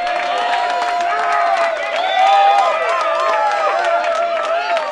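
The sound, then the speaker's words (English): A large crowd cheers and applauds loudly and continuously, with many overlapping shouting voices and a steady patter of clapping throughout. “He's blocked the spoiler. The crowd's going wild.”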